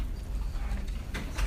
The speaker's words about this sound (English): can one of you close that door? It's a little bit noisy.